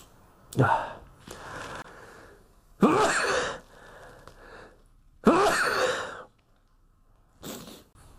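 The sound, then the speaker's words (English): Two loud, explosive sneezes burst out, each preceded by sharp gasping inhales, with a few shorter breathy snorts between them and no talking. “Man, you definitely don't want me sneezing when I'm doing the coup d'etat readings cards.”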